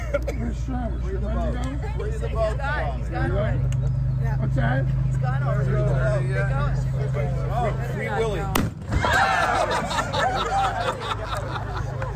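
Lobster boats roar out of a harbor, a loud, steady low engine rumble filling the scene while a crowd chatters and laughs nearby, broken by one sharp bang partway through.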